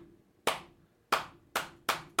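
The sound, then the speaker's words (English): A slow clap of four sharp, crisp hand claps with no voices, the gaps between them shrinking slightly so the rhythm quickens a little toward the end. “Like a slow clap.”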